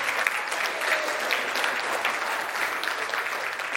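A standing church audience in a sanctuary breaks into steady, sustained applause, dense clapping that stays loud and even for several seconds without any talking over it.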